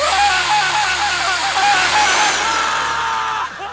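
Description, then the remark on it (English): A loud, steady power drill whirs continuously with a harsh, high-pitched grinding edge as it drills into the nerve bundle in a man's right shoulder, cutting off abruptly near the end. No one speaks. “Orale, drill into the nerve bundle in his right shoulder.”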